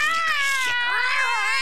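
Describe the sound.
A person lets out a loud, drawn-out yowl imitating the dominant cat in the house, its pitch wavering and dipping midway before rising again, heard alone without any talking.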